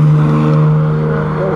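An E-Type sports car's engine drones loudly and steadily, its deep tone holding level before easing slightly as it drives past the wrong way down the straight leading to Mulsanne. No one speaks.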